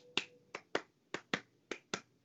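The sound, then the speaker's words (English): Eight sharp hand claps in a steady iambic pattern, each short-gap pair followed by a longer pause, a da-DUM rhythm of iambic pentameter, clapped to write the songs for a musical. No voices. “You're saying you're clapping your hands to the rhythm of an iambic pentameter.”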